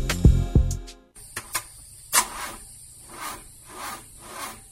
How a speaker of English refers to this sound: Hey, sounds like you got a bad alternator or starter.